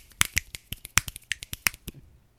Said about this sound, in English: If you can't hear it, I was snapping. It doesn't pick up on Discord, but it will be on the audio.